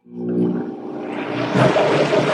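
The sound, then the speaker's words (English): A blender mixes sesame seeds into a dressing: its motor starts with a low, humming whine, then shifts into a louder, steady whirring churn as it mixes, running for a couple of seconds with no talking. “Sort of the last touch to this particular dressing is a little bit of sesame seeds, which I'm going to put in a blender.”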